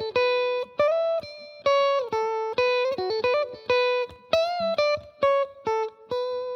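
An electric guitar plays a bright, slightly overdriven riff alone, repeating short phrases with quick legato note changes from hammer-ons and pull-offs, each phrase ringing out then cutting off sharply.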